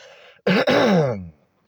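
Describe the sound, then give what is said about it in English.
A single loud throat clearing, a raspy voiced rumble lasting about a second, with a faint breathy hiss just before it and silence after. No one speaks. “But today, at this time, while I'm just coughing, clearing my throat, smoking this blunt, high as a fucking kite,”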